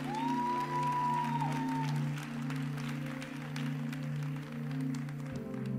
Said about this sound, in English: Give God one last hand clap of praise.